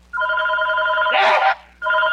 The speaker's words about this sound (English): She's calling me now. Should I pick up so you guys can hear? Should I pick up the phone?